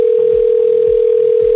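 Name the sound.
telephone dial tone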